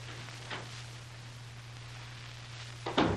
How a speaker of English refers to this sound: He might just be waiting out there. I'll edge up near the door and open it quietly.